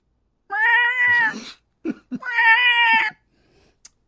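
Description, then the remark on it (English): A voice imitates a baby pterodactyl with two long, shrill, wavering screeches separated by a brief breathy rasp, loud with no talking. “I knew that my baby pterodactyl lessons would somewhere pay off.”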